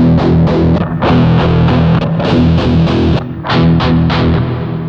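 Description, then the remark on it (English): Loud, distorted electric guitar playing rock chords and riffs through several different custom amp models on a GT100 amp modeler, with gritty overdriven tone, strummed in steady rhythmic bursts with brief pauses and no talking. “Even though they're all rock tones, notice how each has different characteristics.”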